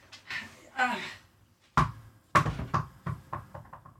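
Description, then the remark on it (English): The ball of Mo, a dog, bounces on a hard floor, a series of sharp thuds coming quicker and softer as it settles, after a brief muffled voice at the start. “No, I'm not going to throw that fucking ball for you. Bad dog.”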